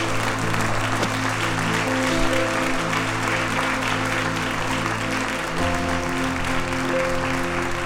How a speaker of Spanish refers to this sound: ¿Alguien puede darle un aplauso al Rey de Reyes, al Señor de Señores?